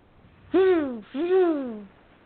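Two loud, drawn-out owl-like hoots, each sliding downward in pitch, with a brief gap between them. They have a rich, voice-like quality, as if a person were imitating an owl.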